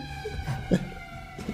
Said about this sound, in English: Anyway, pardon that, ambulance. You're going to hear that shit from time to time. It's just what it is.